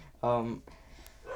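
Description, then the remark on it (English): A therapy dog named Petey gives one loud, drawn-out bark, followed by a fainter vocal sound near the end. No one speaks. “He's clearly got a few words to say on this book.”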